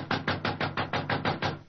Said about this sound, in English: Oh, he must be in his dressing room. I'll knock again.